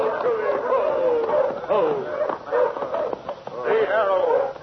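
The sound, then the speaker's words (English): Village dogs raise an alarm at night, barking and yelping excitedly in a continuous, overlapping chorus, loud, with sharp barks tumbling over one another throughout. “But the village dogs raised the alarm, and in a few short seconds, every brave in the village was clustered around the giant Palomino and his famous rider.”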